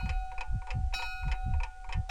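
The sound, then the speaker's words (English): A school clock ticks steadily, with evenly spaced sharp ticks repeating about every quarter second over a low, constant electrical hum. No voices are heard. “So as the clock ticked, and as the bell was getting ready to ring, they haphazardly put together my schedule”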